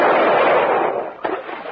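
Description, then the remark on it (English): A loud rifle gunshot in a swamp, its bullet going clean through a boat's rubber hull, with a broad, rumbling roar that slowly fades, followed by a second short, sharp crack near the end. No one speaks. “Your bullet went clean through it.”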